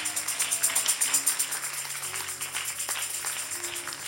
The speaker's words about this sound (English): Go on, continue to clap.